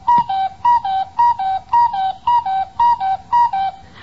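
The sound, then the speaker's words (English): A cuckoo clock, its hands just pushed around to 8 o'clock, calls out its two-note descending "cu-ckoo" again and again in a steady rhythm, each high-then-lower whistle-like pair clear and fairly loud, with no voices over it. “Okay, fellas, I'll be right with you as soon as I check this cuckoo.”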